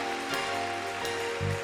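An audience at a worship service claps together in praise, a dense, steady patter of many hands, with sustained keyboard or organ tones held underneath and no voices.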